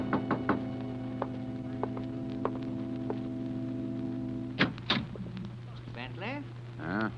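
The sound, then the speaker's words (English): Several sharp knocks on a door at night, a quick cluster and then single raps spaced about a second apart, over a steady electrical hum, followed by louder thuds and a voice starting to speak. “Two nights later, I was alone, and there was a knock on the door.”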